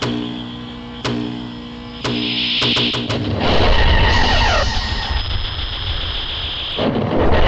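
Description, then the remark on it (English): A sci-fi heat ray sound effect fires, made from single strokes of an electric guitar string plucked at different pitches and combined through a loop: a droning, buzzing tone punctuated by three sharp strikes a second apart, then erupting into a loud, sustained roaring blast with whining, falling sweeps. “But this heat ray, this full sound effect of it going off.”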